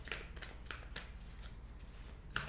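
Vintage-style tarot cards with silver rims being shuffled, a run of soft papery swishes and crisp snaps repeating every half second or so, quiet and intimate, with no one speaking.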